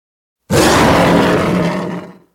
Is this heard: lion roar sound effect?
yes